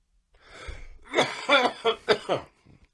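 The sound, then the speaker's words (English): A quick run of four or five fairly loud coughs, each a harsh burst in fast succession, preceded by a soft breathy rasp. No one speaks. “Instead of editing out the dead air, I'm just gonna cut in us coughing during times when we have dead air.”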